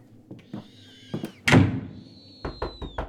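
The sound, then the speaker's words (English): A door slams shut with one loud, booming impact that rings out briefly, set among softer knocks and a thin, eerie whistling tone. “open the door. It wasn't me. Let me out.”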